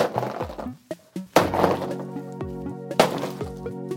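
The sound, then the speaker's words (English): A stick whacks a piñata in a few hard, cracking blows, two especially loud, with a smaller knock between them, while a steady humming tone carries on underneath. “Oh, it's a piñata.”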